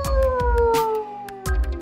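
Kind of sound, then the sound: animal, dog howling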